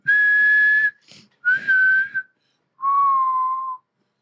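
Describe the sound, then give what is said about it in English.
A person whistles the four-note Hunger Games whistle tune by mouth, inward whistling: three steady notes in a row, then a final lower held note after a brief pause, clear with no talking. “Is that it? The Hunger Games whistle?”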